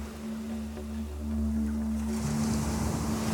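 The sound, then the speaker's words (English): Ocean waves crash in a continuous roaring wash that swells louder partway through, with a deep steady rumble underneath and no voices. “Even the raging roar of stormy winds and crashing waves cannot erode God's love for us.”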